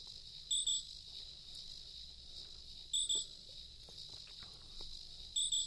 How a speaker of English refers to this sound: Are those crickets?